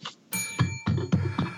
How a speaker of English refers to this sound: Did I just get the bell? Yes.